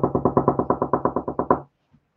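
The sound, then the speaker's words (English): A quick, steady burst of about fourteen low thudding knocks, imitating punches thrown at 300 a minute, rattled off in an even rhythm for a second and a half before stopping abruptly into silence. “300 punches a minute, man. That's, what is that, 5 a second? That sounds about like this.”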